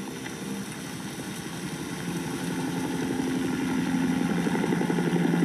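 helicopter flying nearby

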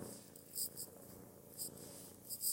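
cat purring

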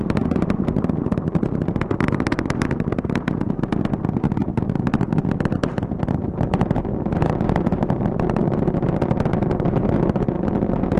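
rocket engines roaring

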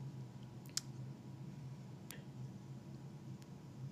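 typing on a keyboard

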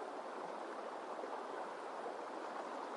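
flowing river water

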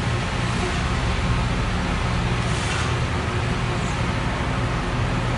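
street traffic

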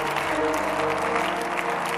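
audience clapping

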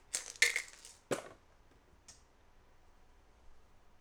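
dice being rolled

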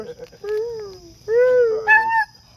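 dog howling

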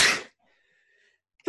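sneeze

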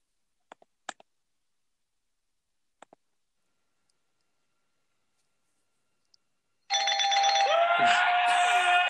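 bell ringing

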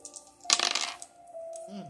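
dice being rolled

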